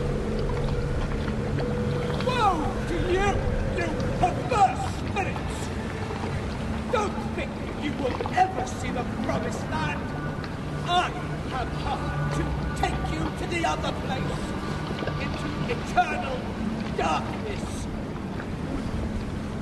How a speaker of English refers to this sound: And then when I looked beyond them, I saw other people on the banks of a great river. Then there came towards us a man in a boat.